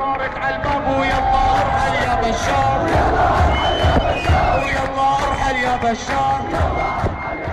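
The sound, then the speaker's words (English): A large crowd at a demonstration against the Assad regime in Syria chants and shouts together in loud, rhythmic bursts of many voices, with cries rising over a steady roar of babble throughout. “Soon the internet is buzzing with videos of demonstrations across Syria and the diaspora.”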